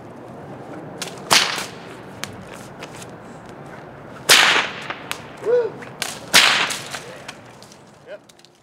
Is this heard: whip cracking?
yes